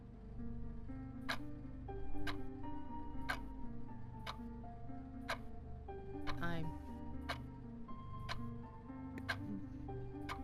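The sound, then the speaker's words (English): A clock ticks loudly and steadily, one sharp click roughly every second, continuing throughout over a low, murmuring background of voices and hum. “You know how hard it is to sleep with a loud ass clock just ticking in your ear holes?”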